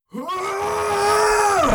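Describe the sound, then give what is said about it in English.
A single loud, drawn-out yell, like a battle cry, from a knight wielding two claymores as he charges in: one voice rising quickly and holding a strained, steady note for over a second before cutting off, forceful. “As you do that, from behind you, you hear a loud yell.”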